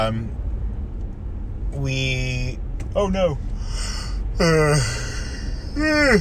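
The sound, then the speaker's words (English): Someone lets out a long, drawn-out yawn, broken into several whiny voiced bursts with a falling pitch, over a steady low rumble. “There's yawn number one.”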